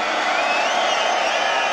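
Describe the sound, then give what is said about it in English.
A large festival crowd in Amsterdam roars and cheers in a steady, loud wall of noise, with high whoops and shouts rising above the dense mass of voices throughout. “Can I hear you make some noise one time?”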